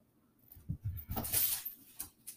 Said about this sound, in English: Sorry. The dog keeps on squeaking his toy, and it's couldn't pick a worse time. Now I'm going to take it away from him until after. He wants you to throw his Christmas latte. No. He pulled out his Christmas toy to play.